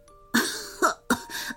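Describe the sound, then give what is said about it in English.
A voice coughs and splutters in three quick, raspy bursts, fairly loud, with harsh breathy noise between them and no speech; the cougher's throat is sore and raspy from singing and cheering. “suddenly coughed and spluttered in reply.”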